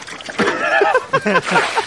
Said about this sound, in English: Trying to get the calf you to breathe. You put water on the calf to shock it. When you get a pail of cold water on your head, like all those football coaches do, you go, and you start breathing.